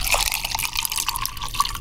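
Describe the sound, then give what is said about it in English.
Lemonade pours steadily from a pitcher into a glass, a continuous splashing trickle with small drips throughout. No one speaks. “Can you just pour me a glass of that?”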